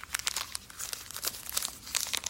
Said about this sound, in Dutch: Haal ik nu het batterijtje uit zijn verpakking.